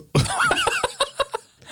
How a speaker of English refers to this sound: Sorry. Wow. I just had a drink of water and had to burp. Hopefully all you people with misophonia out there, misophonia, I don't know how to say it. But hopefully burps are not on your list, because if they are, you just got misophonied.